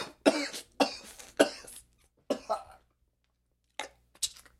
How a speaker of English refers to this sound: Just coughing up blood clots.